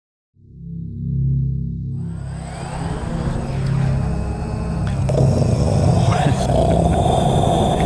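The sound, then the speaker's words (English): A military drone engine starts as a low, steady harmonic hum, then swells into a loud, broad roaring whine that grows stronger and holds to the end. “Oh, we had to play the drone thing again, I guess, huh?”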